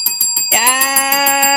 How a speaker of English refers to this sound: Yes. Double ding.